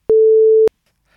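A phone rings with one loud, steady electronic tone lasting about half a second, clicking sharply on and off, followed by near silence.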